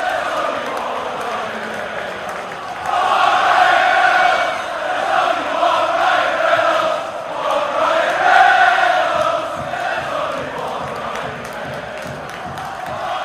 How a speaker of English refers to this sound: There's only one Ryan Reynolds. They're singing to Ryan, the whole crowd.